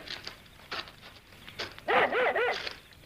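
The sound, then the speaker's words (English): A dog barks excitedly, with a few short yips early on and then a quick run of three loud, rising-and-falling barks. No voices accompany it. “Here, what's the matter with your dog? You always seem to have found something ahead there. Well, it's not like him to get that excited.”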